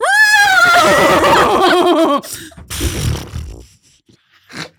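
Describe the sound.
A loud man's voice imitates a horse's whinny: a high, wavering neigh lasting about two seconds, followed by a few softer breathy, scraping noises.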